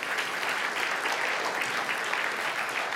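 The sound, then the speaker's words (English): An audience applauds a poem reading, a dense, even patter of many hands clapping at once that holds at a constant level for a few seconds, with no voices rising above it. “Thank you for applauding my reading, but how was the poem itself?”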